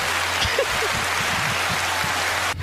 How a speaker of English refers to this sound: Now the applause. Now the applause.